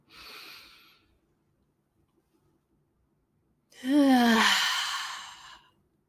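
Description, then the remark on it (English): A soft, airy inhale during a guided breathing exercise, a couple of seconds of silence, then a louder, drawn-out exhale that turns into a slightly voiced sigh, with no talking. “Big inhale in, invitation to think or feel, I trust. And big exhale out.”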